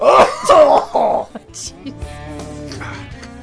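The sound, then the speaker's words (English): Three harsh, rough coughing and throat-clearing bursts in quick succession, loud, from a person smoking cigars, followed by quieter low murmuring sounds. “I think because you have a new cat, it sounds like you coughed up a hairball there.”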